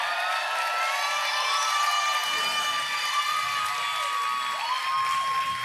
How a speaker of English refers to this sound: That is a cheer that God deserves right there, okay?